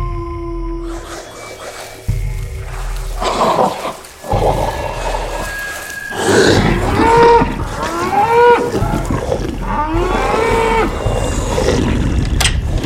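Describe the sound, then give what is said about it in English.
Several cattle moo loudly and repeatedly, their long, wavering calls overlapping in a restless chorus, with a low rumbling background throughout. “These wolves are into our cattle again!”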